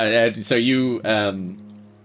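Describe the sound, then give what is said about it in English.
A voice imitates gushing water forced up between two rocks: two wet, gurgling vocal bursts with a brief hissy rush between them, fairly loud, trailing off into a low hum. “makes the sound of, like, water being forced up between two rocks close together.”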